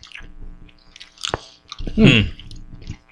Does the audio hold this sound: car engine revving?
no